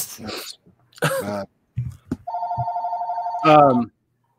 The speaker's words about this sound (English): You know, and that is not my phone.